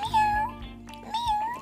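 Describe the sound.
A kitten meows twice in quick succession, each cry thin, high-pitched and drawn out, with no talking.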